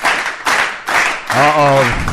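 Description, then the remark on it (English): Short surges of crowd noise with clapping swell in quick succession, then a loud voice lets out a long cheering whoop over the din. Energetic, lasting only a couple of seconds. “The crowd is psyched.”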